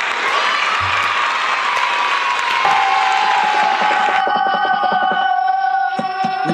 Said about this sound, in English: Let's give them a round of applause first. Just for the names.